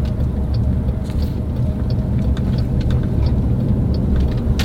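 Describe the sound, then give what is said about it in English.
Steady low rumble of a car driving at 60 in a 45 zone, engine drone and road noise filling the cabin continuously, with faint ticks and rattles on top and no one speaking. “Plus, did you notice me speeding? I was doing 60 in 45 zone.”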